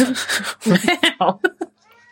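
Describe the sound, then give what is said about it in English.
A female pet cat meows aggressively: a long, harsh, strained yowl, then a rapid string of short, sharp, agitated cries that fade into a faint trailing whine. “my own cat, not Mr. Bigglesworth.”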